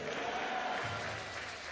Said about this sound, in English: Somebody clap your hands and shout a big amen.